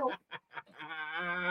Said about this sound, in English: Sound like, you ever see them? They be drowning the bitch. It's crazy. That's the duck screaming.